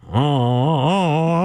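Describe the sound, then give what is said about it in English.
A single voice groans in a steady, loud drone with a wobbling, uneven pitch, imitating a car engine struggling and failing to start, lasting about a second and a half. “Oh, I sound like a car that's not starting.”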